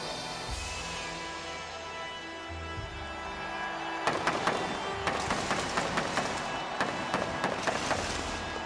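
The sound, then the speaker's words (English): Arena fireworks go off as Triple H lies on the ground, bursting in a rapid, irregular volley of sharp bangs and crackles, loud, following a few seconds of low rumbling roar and continuing to the end. “Imagine that feeling, you're laying on the ground, you know, and the fireworks go off.”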